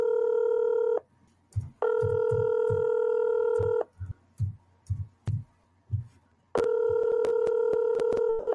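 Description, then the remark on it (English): A phone call placed to make an order rings out on the line with no answer: three long, steady electronic ring tones separated by pauses, with soft low thumps in the gaps and no voices. “Won't have to be able to eat now because they won't answer my goddamn phone.”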